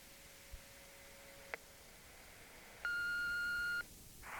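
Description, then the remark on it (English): Electronic keypad tones of a hotel room phone as a voicemail is retrieved: a brief click and short beep, then one long steady multi-tone beep lasting about a second, ending with a soft rush of noise, clear. “Someone has left Clemson Mallory a voicemail on his hotel room phone.”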